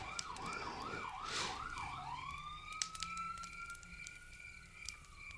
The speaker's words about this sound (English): No, that's an ambulance. Oh. There's been about a dozen cops since I've been sitting here looking out this window, but for once it's an ambulance.